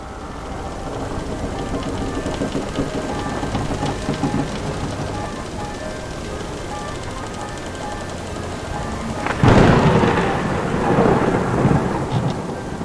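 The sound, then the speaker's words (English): Steady heavy rain hisses throughout a strong summer storm in the Gulf of Haraki, then a loud thunderclap bursts in near the end and rumbles on beneath the downpour. No voices. “Out in the Gulf of Haraki, the summer storm was unexpectedly strong.”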